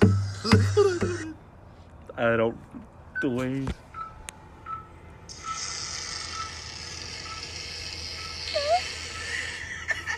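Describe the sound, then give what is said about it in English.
A fart plays from an Instagram video about someone who would not be released after a colonoscopy until they farted: a couple of brief, buzzy, sputtering bursts over steady background noise and hiss, with a few words of speech around them. “That's a gnarly fart.”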